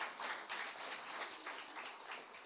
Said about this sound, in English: But God bless those who are in their 80s. We give all those who are over 80 a round of applause. Respect!